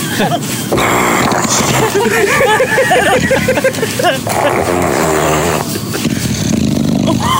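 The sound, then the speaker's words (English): Smooch, a seven-year-old female English bulldog with a short snout, snoring loudly and almost continuously, with harsh, gurgling rasps and growly, motor-like rumbles that rise and fall in pitch over several long, wheezing breaths. “Have you ever heard an English bulldog snore?”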